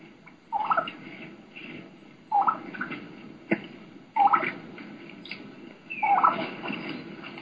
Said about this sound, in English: there's another one. Typically considered a key-key run, where they do a key-key, the young hen sounds, and then run right into a yelp.